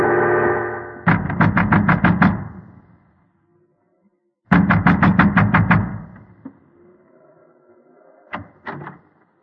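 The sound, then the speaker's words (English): A man in an oilskin and gigantic boots pounds with heavy fists on the wooden door of a windmill by the sea dikes on a moonlit night, in two rapid, loud volleys of about eight blows each, followed by a couple of final thuds, over a low rumbling background. “A man wrapped in an oilskin and wearing gigantic boots was pounding at the door of the windmill.”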